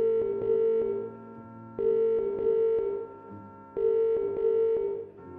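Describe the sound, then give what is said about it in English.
An astro video phone booth's electronic tones sound in three steady bursts about two seconds apart, fairly loud, with short clicks in between and no one talking. “Meanwhile, in an astro video phone booth on the planet Mango...”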